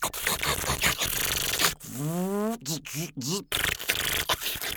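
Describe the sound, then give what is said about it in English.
A mouth imitates a Create-A-Card greeting-card printer by sucking in air: raspy, breathy air-sucking noise around a whining tone that glides upward, then three short warbling up-and-down chirps, fairly loud. “And as a kid, I developed this weird way of sucking air into my mouth that sounded exactly like the Create-A-Card printer.”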